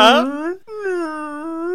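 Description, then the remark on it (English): A person vocally imitates a whale call: two long, wavering tonal moans with a rich stack of harmonics, the first rising then sliding down, a short gap, then a steadier sustained drone. “And yeah, because all whales respond to the same thing. You just put your neck to the mic and go...”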